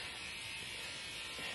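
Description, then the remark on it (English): A chainsaw-like noise: a harsh, steady, raspy buzzing drone that holds at an even loudness for about a second and a half, with no talking over it. “Chainsaw noise. Yeah. For emphasis.”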